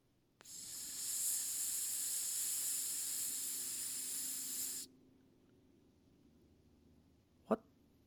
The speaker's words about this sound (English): The fuck is that sound? I'm like, is that coming over the AirPods? Like, wait, did it is that the music? Are my AirPods hissing?